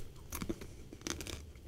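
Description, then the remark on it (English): Crunching of crispy snacks dipped in sour cream being chewed, a series of sharp, crackly bites in quick irregular bursts, fairly quiet overall with no talking. “They're crunching.”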